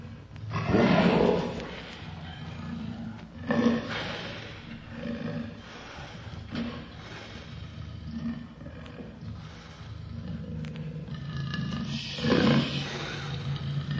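Deep, rumbling lion roars rise and fall in several heavy bursts, with a low growling undertone continuing between the louder swells. No one speaks.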